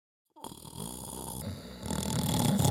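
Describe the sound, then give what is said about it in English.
Loud, congested breathing with a raspy, snore-like rattle starts abruptly after a moment of silence and continues steadily, growing louder and rougher toward the end. “The wizard is the loudest breather I've ever heard. Like she's always got a cold.”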